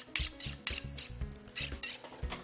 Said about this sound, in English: So we have a 8-inch Wusthof chef knife. And we're just gonna get that nice and sharp.